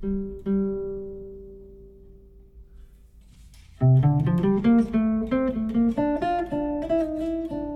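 A sustained instrument tone rings out and slowly decays, then a run of melodic notes plays loudly with long, washy reverb tails blurring each note into the next.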